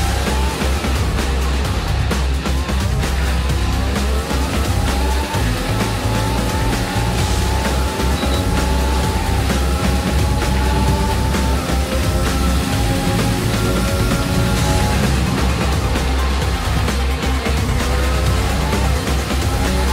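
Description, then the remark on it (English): A car engine roars continuously at high revs, pitch rising and falling through gear changes as it drives a fast lap, with occasional tire squeal and no voices. “Start your engine.”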